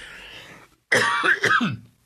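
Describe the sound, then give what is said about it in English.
A person coughs and clears their throat, a short burst of harsh, raspy hacking after a brief moment of quiet, fairly loud and with no talking. “My goodness, I'm starting out and I'm already coughing.”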